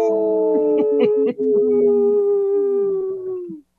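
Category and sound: animal, wolves howling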